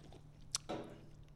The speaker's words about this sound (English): The grape soju. It just smells like Hubba Bubba, this one. Well, I guess that's why it's called grape bubble gum. Oh, yeah. Oh, that makes sense. It does smell good though. Yeah. All right, let's give it a cheers and a sip. Cheers. Let's go.